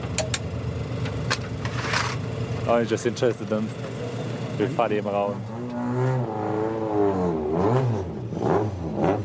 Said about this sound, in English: While the mechanics work on the rally cars, they're surrounded by onlookers.